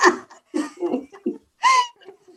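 A man coughs loudly in a series of about five rough, throaty bursts, deep and growling, with short pauses between them, fairly close by.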